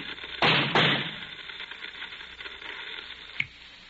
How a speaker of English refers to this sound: Howard, what's the shooting?